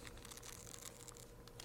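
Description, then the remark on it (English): Thin pages of a paper Bible rustle and flip in quick, soft bursts as someone turns to Nahum chapter 3, heard quietly with no one speaking. “So give those of us a second to get there in the paper Bibles.”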